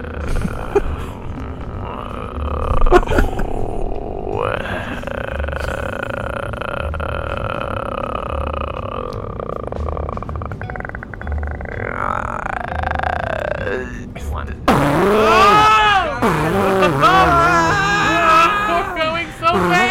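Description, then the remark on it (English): A voice imitates a fast airplane engine with a long, steady droning hum that shifts pitch a few times, then turns into rapid, wobbling revving sounds near the end. “Let me start the airplane in 3, 2. Can you do the, like, fast engine?”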